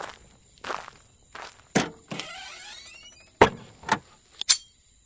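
Several distinct footsteps crunch at an uneven pace as a man walks to the back of a car, with a brief rising mechanical whir in the middle, like a car window or latch, and faint constant high-pitched hiss throughout.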